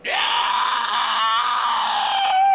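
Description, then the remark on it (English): A person lets out a long, loud, sustained screech, imitating a creature's shriek, with a raspy wavering quality that holds steady for a couple of seconds and rises slightly at the end. “and they're just like, I'm going to screech. Do it.”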